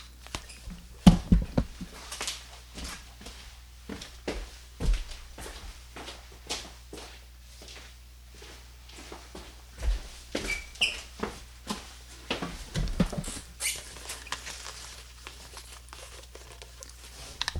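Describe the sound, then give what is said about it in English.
Irregular footsteps and soft knocks as a person walks over to grab a pad of paper, followed by rustling and crinkling as the pad is picked up and handled. A low steady hum sits underneath, with no talking. “I'm going to put the headset down, and you're going to hear me walk over and grab my pad of paper.”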